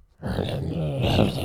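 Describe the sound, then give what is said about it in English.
A cat growls while attacking a person, a low, rough, continuous rumble, fairly loud, starting after a brief silence and holding steady for over a second with no talking. “Bro, your cat's attacking me now.”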